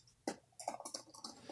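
household object, computer keyboard typing

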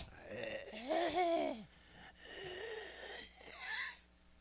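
human body sound, coughing and wheezing

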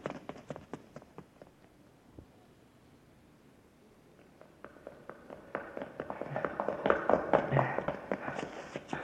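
sound effect, footsteps running up stairs

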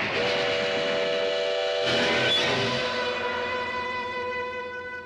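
vehicle, train whistle blowing

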